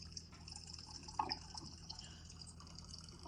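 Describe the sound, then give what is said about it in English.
A thin, steady stream of water runs into a container, trickling and gurgling faintly, with one brief louder splash partway through and no voices. “Are you fucking pissing right now? No, I'm getting water.”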